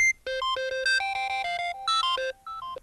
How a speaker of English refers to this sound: In fact, my regular iPhone ringtone is this, and I want to just hold it up to the microphone here after I get it going, and let me change it to something else. And here's my ringtone. Isn't that cool? Wow. It's called Echo Plus Beeps.